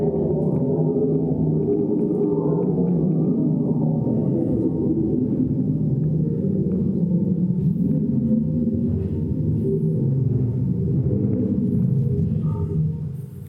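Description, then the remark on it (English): Infrasound recording of a large ash-producing volcanic eruption: a loud, continuous deep rumbling roar, steady throughout, with the low churning tones seeming to sink deeper as it goes on. No voices. “Listen to how it goes even deeper as it progresses.”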